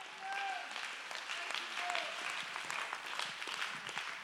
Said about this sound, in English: Oh, let's clap our hands and give God the praise. This is for everybody.